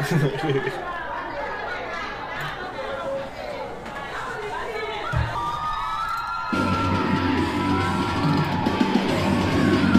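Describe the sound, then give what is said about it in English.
A dense Black Friday crowd shouts and yells in a loud, chaotic din of overlapping voices as store doors break open, surging even louder partway through as the mass of people pushes forward. “Doors broke again.”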